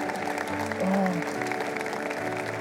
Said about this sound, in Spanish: Den un aplauso a su Dios en este día. Gracias, Señor, qué bueno eres.